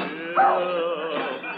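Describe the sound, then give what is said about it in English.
A dog, a hound, lets out a sharp yelp followed by drawn-out, whining whimpers, all within under two seconds, with a thin, muffled tone as if from an old recording. “Of all the clumsy, fumble-footed hounds.”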